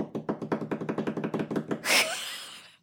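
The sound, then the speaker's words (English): Hands drum a quick, fairly steady run of about a dozen knocks on a hard surface, then finish with one louder, brighter hit that rings briefly before fading. No one speaks. “I must get better at this drumming.”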